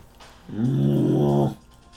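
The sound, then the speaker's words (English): A person lets out a single loud, growling roar, imitating an animal. It's sustained for about a second, with quiet before and after. “I roar! Then I jump!”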